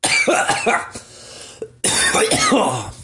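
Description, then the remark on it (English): Heavy, hacking coughs burst out loud in a rapid string after a person smoked from a one-hitter, stop for a moment, then start again just as harshly, with some throaty rasping between them. “Every time I'm like super coughing, like sometimes I'll be doing dabs or whatever.”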